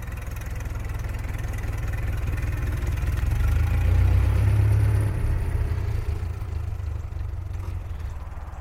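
The engine of a type 630 model car runs steadily with a deep, continuous rumble as it drives away from the Spandel villa through German scenery on a sunny, clear day, swelling a little louder midway before settling back to an even drone. No one speaks.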